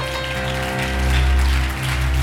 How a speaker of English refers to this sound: Oh, clap your hands, all you people, and shout with a voice of triumph.